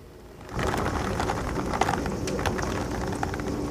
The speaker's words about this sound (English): You'll hear it in the recording. The rain and wind is so bad today, and I feel so bad for everyone running the Boston Marathon because that's today too.